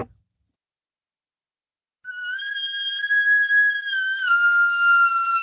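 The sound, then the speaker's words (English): A cow elk bugle: one long, high, whistling tone that holds steady for several seconds, dips slightly in pitch toward the end, and rings out alone after a short silence. “this is what a cow bugle sounds like.”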